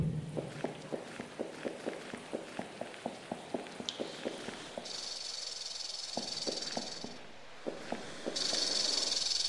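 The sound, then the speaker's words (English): A snake hisses in two sustained, steady bursts while quick rhythmic footsteps patter nearby, pausing and resuming between the hisses. “There's gotta be a way around that snake.”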